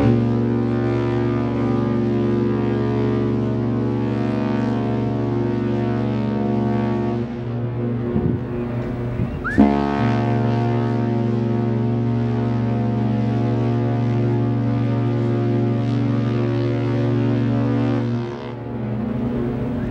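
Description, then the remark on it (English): A deep, loud ship's whistle blares in long sustained blasts, rich and droning, with a brief wavering break partway through before the steady low tone resumes; no one speaks. “I can almost hear the ship's whistle”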